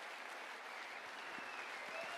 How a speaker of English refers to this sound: So, everyone that isn't necessary to run the cameras and live stream, when you come up on stage here to. Get a well-deserved round of applause.